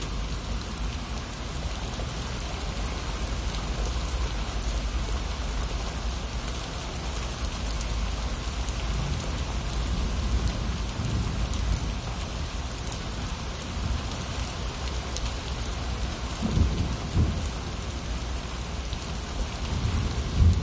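Steady, dense rainfall hisses continuously, with low rumbles of thunder rolling underneath. No voices, just the constant wash of rain.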